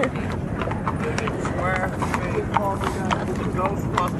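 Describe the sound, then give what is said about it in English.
Horse hooves clip-clop steadily on pavement as horse-drawn carriages roll past, the hoofbeats continuous, layered over a busy outdoor bustle with faint voices murmuring in the background. “Got horses and carriages.”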